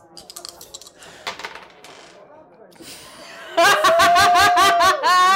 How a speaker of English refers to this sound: Go ahead and roll a brawn test. Oh my god. Try these dice.